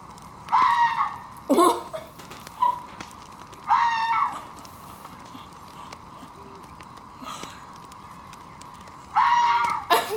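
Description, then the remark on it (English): Several shrill, harsh fox screams ring out in separate bursts, each a raspy wavering cry lasting under a second, with quiet pauses between them and a steady faint hum underneath. “Yeah, while we're at it, let's just listen to the foxes are really funny.”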